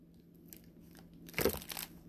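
A bag of assorted coins is handled: a brief crinkling, crunchy rustle with a few faint metallic clinks, lasting under a second after quiet background hum, no talking.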